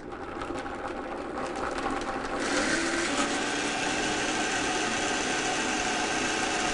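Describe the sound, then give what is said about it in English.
A blender whirs steadily as it purees mango until smooth for a dip, its motor noise growing fuller and louder after a couple of seconds, then holding a constant churning drone with no talking. “Okay, I'm gonna blend this mango until smooth.”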